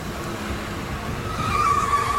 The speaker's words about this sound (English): He just pulled right in front of us in the orange van. And he's looking right at us!